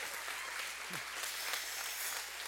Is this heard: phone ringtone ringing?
no